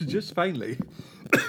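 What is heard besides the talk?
cough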